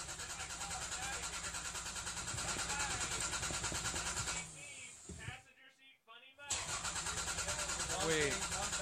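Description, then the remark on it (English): A car engine cranks over and over without catching, a loud, rhythmic churning that cuts out briefly partway through before grinding on again, with voices faintly in the background. “Your car won't start.”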